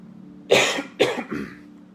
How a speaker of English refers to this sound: I need to get water. I am going to cough.